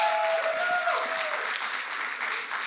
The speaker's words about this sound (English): Can we just give Jesus a round of applause? Come on.